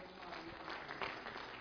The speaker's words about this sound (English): Give the Lord a hand clap, please.